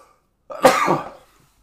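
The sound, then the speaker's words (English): A single sharp, loud, explosive sneeze lasting under a second before fading into silence, with no talking around it. “Always sneeze when I do a podcast.”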